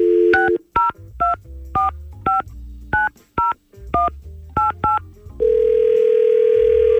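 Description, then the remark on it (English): A quick run of about ten touch-tone dialing beeps as radio hosts call a woman on the telephone, each a short clear tone, followed by a steady continuous line tone holding to the end. No one speaks. “Let's see if we can get her on the phone and set them up again.”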